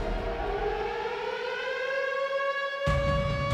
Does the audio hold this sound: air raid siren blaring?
yes